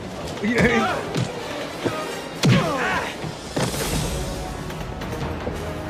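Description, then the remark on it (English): Several heavy, exaggerated punch sound effects from a film, two fighters in leather gloves punching each other in the face, land at irregular intervals, each a sharp thwack, mixed with strained vocal grunts and a busy background of movement. “They both have leather gloves on, and they're punching each other in the face like that.”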